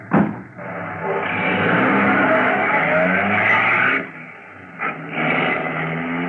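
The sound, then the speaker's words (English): A taxi cab's engine catches with a sharp burst, then roars steadily at high revs for several seconds before easing off and surging again as the cab pulls away, loud. “Get into the cab and start it.”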